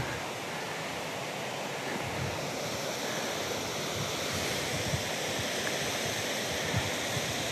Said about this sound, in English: This is back to the, this is where the water runs off from the lake down into the tunnel. You can hear the water running.